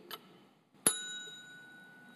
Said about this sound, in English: Service bell. These are means of communication.